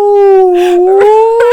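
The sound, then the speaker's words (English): A voice imitates whale speech with one loud, drawn-out tonal wail that slowly bends upward, unbroken for over a second, with a few breathy bursts mixed in and no words. “She's like, I speak whale, so.”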